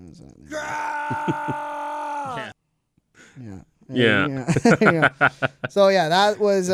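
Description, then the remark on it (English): A man lets out a loud, sustained scream lasting about two seconds, followed after a brief pause by strained, shouted vocal bursts. “He said the scream. He wanted the scream. He's gonna scream.”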